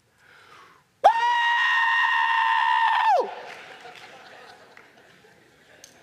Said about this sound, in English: Jumping up and down, hollering and screaming. These reserved accountants, keeping it tight, keeping it tight.